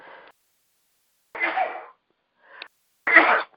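Two sharp, breathy sneezes from a man with a runny nose burst out a second apart, with a faint quick intake of breath between them and silence around them.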